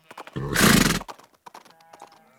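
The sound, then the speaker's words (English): A donkey pulling a cart clip-clops in a steady rhythm on the outskirts of a village in Scotland. A loud braying call briefly drowns out the hooves before the clopping carries on. “The driver of a donkey cart is giving him a lift, and now he's on the last leg of his journey, the outskirts of the village of Ardnashalloch.”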